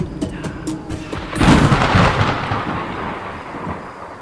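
A deep, rolling thunderclap from an approaching storm bursts out after a few faint crackles, rumbling loudly and then slowly fading over several seconds against a steady hiss of rain-like noise, with no one talking.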